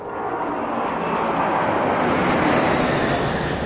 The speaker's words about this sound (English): It's just these planes. They're so loud I can't concentrate.